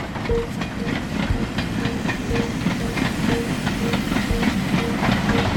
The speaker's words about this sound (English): At that very moment, the train went into a slight curve and somewhat slowed down.